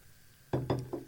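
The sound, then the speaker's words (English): A few short sipping sounds of sparkling water from a glass in a studio, three or four quick slurps in a row after a moment of quiet, with no talking. “Let's take a little sip.”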